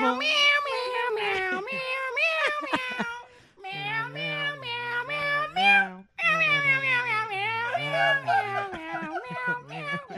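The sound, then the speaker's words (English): Several cats meow loudly together in a dense, overlapping chorus of drawn-out, wavering cries that continues for about ten seconds, with only a brief lull partway through. “It's like a choir of cats.”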